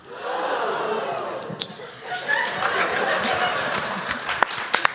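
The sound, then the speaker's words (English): An audience gasps in surprise, a broad collective murmur of breath and voices that swells after a second or so and stays loud, with a few sharp clicks scattered through it. “That was a fantastic gasp.”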